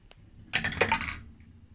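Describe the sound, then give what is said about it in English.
A quick burst of hard clattering as a D10 hit die, the official Asher portal dice by Cozy Gamer Shop, tumbles and bounces across a hard surface, lasting under a second, then settling into quiet with a faint final tick. “We're going to go back to the portal dice, the official Asher dice by Cozy Gamer Shop.”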